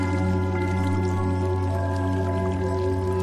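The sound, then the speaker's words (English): Water pours steadily into a collection container in one continuous, even stream, with a constant low hum underneath and no voices. A water sample is being collected on January 30th. “So today is January 30th, water collection number 16.”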